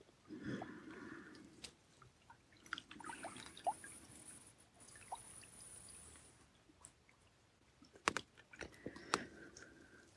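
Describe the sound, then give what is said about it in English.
Quiet water trickling and flowing, with irregular little splashes and drips popping out now and then; no voices are heard. “Literally, the flow of the water.”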